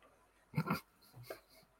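A dog snores softly in the background, with one fuller rumbling snort followed by a fainter, shorter breath about half a second later.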